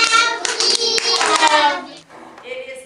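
A group of children claps together in a dense, steady patter of many hands, with bright young voices calling out over the applause before it trails off near the end.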